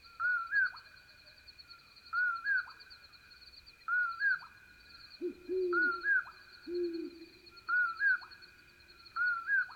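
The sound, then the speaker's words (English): Two deep, low owl hoots of a great horned owl sound in the middle, set against a steady insect drone and a series of repeated higher-pitched bird calls. “In this recording, listen also for the low hoots of a great horned owl and the soft bouncing toots of a very distant western screech owl.”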